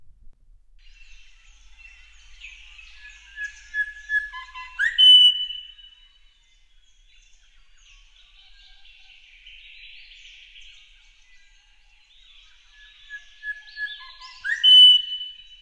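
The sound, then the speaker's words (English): Grey shrike-thrush song: clear, rich whistled phrases that build to a loud, ringing upward whistle, twice, with softer warbling notes in between. Clean, with no voices. “The bird sound of the week belongs to... the Grey Strike Thrush.”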